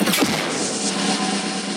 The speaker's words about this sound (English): It's time to bring in our special guest. Drum roll, please.